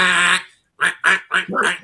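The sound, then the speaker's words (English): A person imitates a duck, giving one long nasal quack followed by four short, rapid quacks, loud, with a brief pause after the first. “I need one of y'all motherfuckers to quack like a duck.”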